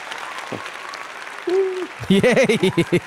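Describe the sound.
An audience, paid 50 cents each to clap really loudly, claps in a steady, dense patter to welcome a doctor onto a show about healthcare; partway through a voice rises over the clapping with drawn-out, sing-song vocal sounds.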